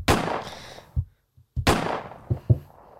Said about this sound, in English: Couple of those wee gunshots.